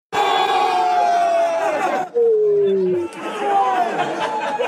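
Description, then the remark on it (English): A racetrack crowd at horse races roars with cheering and screaming as the ponies they bet on win, dense and loud; midway the din briefly drops while a single sustained yell rings out, then the massed shouting surges back. “there's nothing better than when everyone was kind of, you know, betting on similar ponies and then they'd win and like the whole place is going nuts. We're all screaming.”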